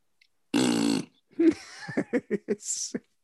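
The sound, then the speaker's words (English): A voice blows a loud, buzzy raspberry imitating a fart, lasting about half a second, followed by a rapid run of short voiced bursts and a breathy hiss. “Farts are always funny.”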